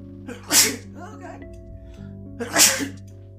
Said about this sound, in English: Sneezing.